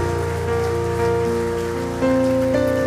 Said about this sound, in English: Come on, somebody give the Lord a hand clap of praise.